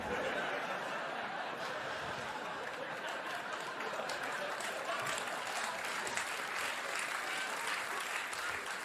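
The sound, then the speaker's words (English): Steady, dense applause from a large audience fills the whole stretch, with scattered laughter mixed into the clapping and no one speaking over it. “I like that everyone claps for that.”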